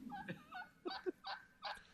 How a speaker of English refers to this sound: These damn turkeys ain't gonna make it.